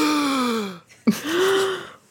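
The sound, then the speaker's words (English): Loud, dramatic gasping: a long breathy descending tone, a sudden sharp catch of breath, then a rising inhaled gasp, with no speech. “I appreciate that you talked about their breathing while demonstrating your own power of breath.”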